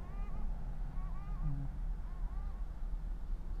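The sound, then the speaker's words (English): A seagull gives three short, nasal, wavering calls, evenly spaced, over a steady low rumble of background noise. “That is a seagull.”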